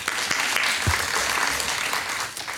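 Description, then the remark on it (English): A crowd applauds with dense, steady clapping that stays loud and even for a couple of seconds before tapering slightly at the end, with no voices standing out. “I mean, round of applause for doing that.”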